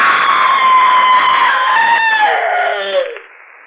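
A loud, sustained scream from a single voice holds a high, steady pitch for about three seconds, then slides downward and cuts off, with no talking around it.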